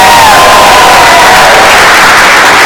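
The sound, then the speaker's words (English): A loud crowd at the MPI Adjust-a-thon at Cleveland University cheers and whoops steadily, a dense wash of many voices with a few higher shouts rising over it throughout. “So today we have an interactive crowd.”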